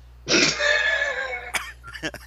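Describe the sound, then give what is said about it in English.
A single hard, raspy cough, strained and drawn out for about a second, followed by a few quick spoken syllables. “I have abs when I cough really hard.”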